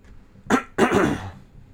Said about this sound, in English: Excuse me, just clearing my throat there.